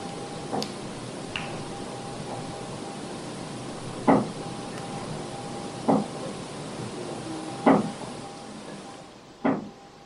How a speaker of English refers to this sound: But yeah, I hear knocking and then I hear a faint moan. Right at the very, very end.